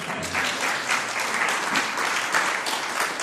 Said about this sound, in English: And they gave you a clap as well. They did.